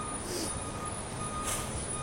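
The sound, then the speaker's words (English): A garbage truck backing up on a street in light warm rain, its high-pitched reversing beeps sounding over a steady rumble of engine and street noise, with two brief hissing bursts. “It's like 100 garbage trucks everywhere.”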